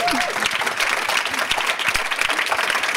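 A steady round of applause, many hands clapping in a dense, crackling wash that holds at an even loudness for the whole stretch, with a few brief vocal sounds mixed in at the start.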